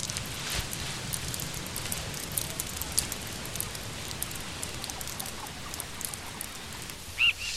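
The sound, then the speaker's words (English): Steady rain falls continuously, a dense hiss with scattered patters and drips, holding an even level throughout with one brief sharp tick near the end. “I'm going to get your dog back as soon as it stops raining.”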